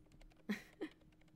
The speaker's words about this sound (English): Oh, this was one of the hardest effects for some reason. Mouse clicking. Really? It's really hard because a lot of the mouse clicks you'll hear that are Foley'd are like old school, like 90s Microsoft mice.